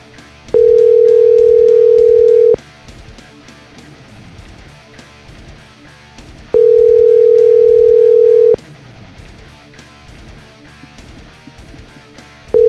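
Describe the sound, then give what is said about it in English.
A telephone ringback tone purrs in steady two-second bursts separated by four-second pauses while someone calls a person who does not pick up, two full rings and the start of a third, loud and clear over a faint murmur of background noise. “There's no way he's gonna get on the phone here. That's too many rings.”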